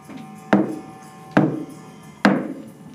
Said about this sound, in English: Let's knock. I was going to suggest stealth, but we can knock. We're going to knock.